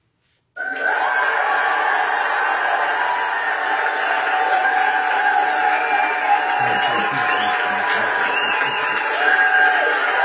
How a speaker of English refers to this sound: Oh, that's quite the applause.